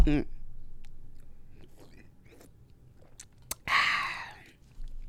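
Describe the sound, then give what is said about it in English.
Soft mouth noises of someone taking a sip of a drink during a Facebook Live, with faint wet slurps and a sharp click, then a brief breathy voiced exclamation after swallowing. “Let me take a sip for this.”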